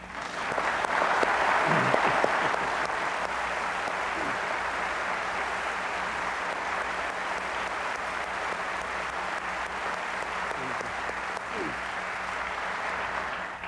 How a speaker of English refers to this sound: will you stand and let's clap you.